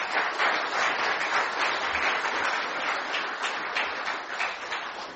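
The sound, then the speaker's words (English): Steady audience applause fills the whole stretch, a dense wash of many hands clapping at once, even in loudness without pauses or voices. “Give these guys a round of applause.”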